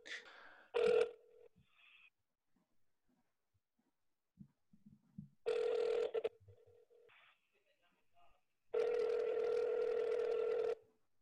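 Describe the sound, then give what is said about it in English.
A phone call to the USATF national hotline over speakerphone: a few short dial tones, then two long ringback tones separated by silence, with faint murmured sounds between, all slightly tinny and thin. “Put it on speakerphone and hold up to your microphone.”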